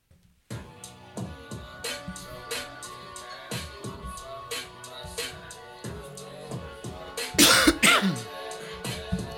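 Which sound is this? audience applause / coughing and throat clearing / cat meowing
coughing and throat clearing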